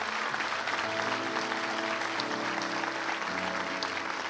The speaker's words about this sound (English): Uh-oh. We got to clap for God. God, not us.